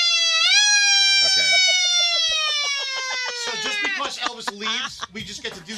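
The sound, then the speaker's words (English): A person vocally imitates a siren with one loud, sustained high wail that slowly sinks in pitch over several seconds, then breaks into shaky, wavering yelps at the end. “I like the siren.”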